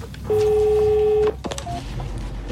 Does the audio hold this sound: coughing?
no